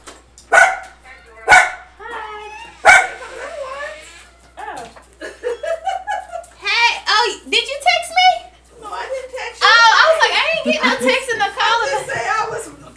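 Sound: dogs barking at someone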